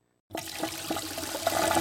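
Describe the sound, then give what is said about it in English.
A diesel train toilet flushes: a sudden rushing flush of water starts after a brief silence and continues steadily, loud, with a gurgling, hissing quality. “This is a diesel train toilet flush.”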